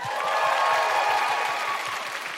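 A crowd claps steadily in sustained, fairly loud applause for a feminist guest, a dense wash of many hands with a faint rhythmic thump underneath, continuing without letup.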